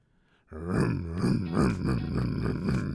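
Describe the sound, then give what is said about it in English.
After a half-second of quiet, a voice launches into a loud, continuous growling imitation of car engine sounds, its buzzy pitch rising and falling in repeated revving surges for about two and a half seconds. “Yeah, that's my attempt to make some car sounds.”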